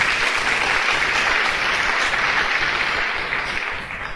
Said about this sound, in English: So just one more round of applause for everybody that's been up here.